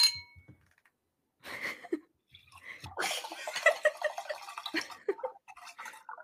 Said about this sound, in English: I literally just asked her if she could pour me some water. That's all I said.